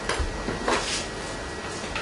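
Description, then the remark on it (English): A little water is poured into a bowl of around 400 grams of glutinous (sticky) rice, a steady splashing hiss lasting a couple of seconds, with a few light clinks of the bowl mixed in. “And just put a little bit of water in it.”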